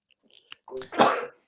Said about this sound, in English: There you go. Had to sneeze there. Tis the season.